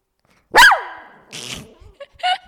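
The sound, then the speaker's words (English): A dog lets out one loud, sharp bark, followed by a few quieter, shorter yips and muffled sounds trailing off. “He'll probably bark again when the person leaves the bathroom, just a heads up, but that's okay.”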